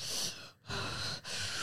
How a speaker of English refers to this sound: Are you tired? I'm hungry. You're hungry. You're yawning though. Yawning is a lack of oxygen. You do know that, right?